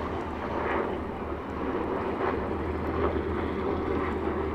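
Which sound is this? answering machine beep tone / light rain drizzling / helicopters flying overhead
helicopters flying overhead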